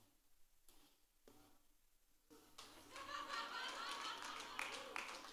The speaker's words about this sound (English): There's a few dads here. Thank you for clapping. Thank you.